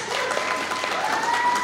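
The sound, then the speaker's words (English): An audience applauds with steady, dense clapping throughout, a continuous crackling wash of many hands at an even loudness, with a faint high tone running underneath. “So now by your applause.”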